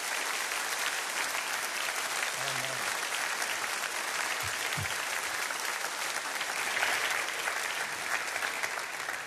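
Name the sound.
warm audience applause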